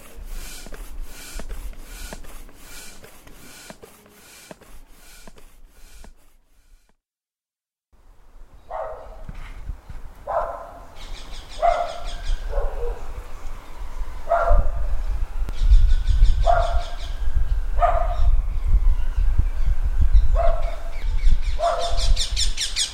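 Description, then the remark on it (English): Several dogs bark repeatedly in the evening in a steady, insistent rhythm while parakeets chirp and squawk in high bursts throughout, with a brief lull early on before the barking resumes and builds. “Well, I suppose that's the soundtrack of a stressful evening. Dogs, sirens, and parakeets.”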